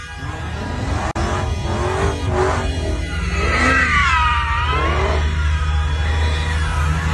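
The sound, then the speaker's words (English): A car engine revs hard and repeatedly over a constant low rumble, its pitch rising and falling while tires squeal in sweeping arcs as the car, carrying men waving the Palestinian flag, spins donuts in tight circles after abruptly stopping traffic in New York. “It says, down below, it says, a car carrying men waving the Palestinian flag abruptly and dangerously stopping traffic to run donuts, causing a commotion and fear, distracting drivers and endangering lives.”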